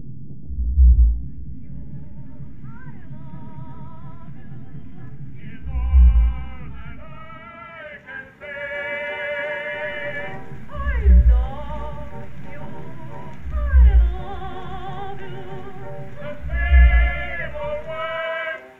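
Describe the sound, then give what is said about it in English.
Sped-up recording of a male fin whale singing: about five deep, booming low pulses spaced a few seconds apart, set against a continuous rumble and higher wavering, whistle-like tones. “We sped up that recording of a fin whale singing so you could hear him.”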